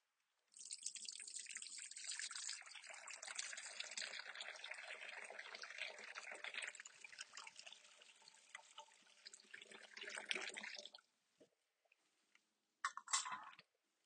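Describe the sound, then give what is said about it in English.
Water trickles and pours steadily into a baptismal font during a church baptism service for about ten seconds, soft, then tapers off into a few scattered drips and small splashes. No one speaks. “We thank you, Almighty God, for the gift of water.”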